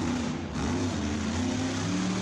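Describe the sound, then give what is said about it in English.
A monster truck engine roars loudly and steadily, a deep rumbling drone with a thick wash of noise, holding its throttle without breaks and no voices. “The monster trucks are coming.”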